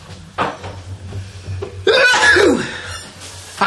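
One loud, explosive sneeze bursts right into the microphone, harsh and breathy with a voiced wail sliding downward, after a few quieter sharp intakes of breath over a low steady hum.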